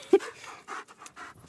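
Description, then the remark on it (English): A wolf puppy named Joy pants rapidly and eagerly, quick breathy huffs in an uneven rhythm with a small yelp-like catch at the start, no talking. “The puppy, a wolf, bounds out of his arms and runs to Maya, kissing her.”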